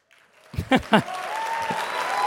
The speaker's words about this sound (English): Right? You should clap for her, not for me.